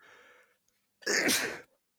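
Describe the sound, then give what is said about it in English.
A single loud sneeze bursts out after a short breathy intake of air, followed by quiet; no one speaks. “Bless you. Thanks.”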